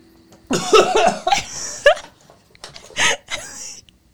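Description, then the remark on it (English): A person retches and vomits chicken and gravy onto a carpet right next to a trash can during baby food testing: a long, strained, groaning heave followed by several shorter harsh, gurgling bursts, loud and ragged with brief pauses between them. “I just puked on their carpet.”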